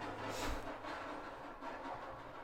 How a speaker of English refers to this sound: Get the fuck out of here. I thought it was fireworks and it's a fucking car. It sounds like it's dragging a bag of cans. Right? That's exactly probably what it is. Like a huge bag of cans, though.